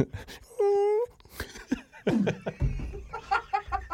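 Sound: person imitating a dog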